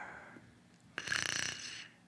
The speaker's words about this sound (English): Wait, I hear a mysterious snore too.